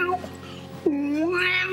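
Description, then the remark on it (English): A person imitates a cat's meow: one drawn-out, voiced mew that slides in pitch and holds for about a second, preceded by a short stretch of quieter vocal sound. “I do lots of different types of meows.”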